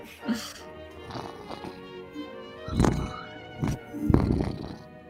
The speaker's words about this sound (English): cat interference.